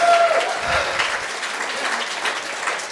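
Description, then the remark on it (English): A group of children clapping their hands together, a dense, steady patter of many claps filling the whole stretch at an even, fairly loud level, with a brief tone at the start. “Let's all clap our hands, boys and girls.”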